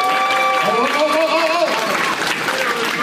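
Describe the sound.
Audience applause, a dense, steady wash of many hands clapping for about three seconds, with a few voices calling out and cheering mixed into the sound.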